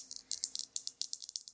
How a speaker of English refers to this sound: I'm rolling my dice. In anticipation.